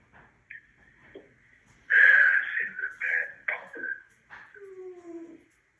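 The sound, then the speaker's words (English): Dogs whimper and whine in high, drawn-out tones, swelling to a louder, rougher burst midway with snorty breaths, then trailing off into thin falling whines, with no talking. “Please let the dogs out.”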